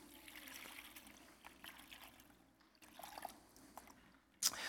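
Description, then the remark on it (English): Water is poured into a basin, trickling and splashing in uneven spurts, fairly quiet, ending with a sharper splash near the end. “And so what he does is he takes the water and he pours it into this basin.”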